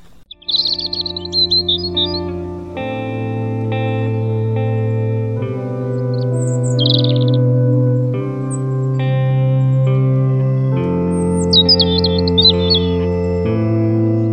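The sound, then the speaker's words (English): Bright bird chirps come in a few short bursts, near the start, in the middle and toward the end, floating over a loud, sustained, reverberant musical drone. “… by ….”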